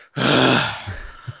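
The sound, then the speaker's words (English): A voice imitates a film character's labored breathing: one long, loud, raspy breath, then a few short, heavy grunting gasps trailing off. “And the Momo setup, you know, I always love that because you could hear the labored breathing.”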